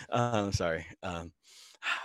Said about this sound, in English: So I've been really focusing today, doing lots of deep breathing. Hold on, here we go. Let me get another one.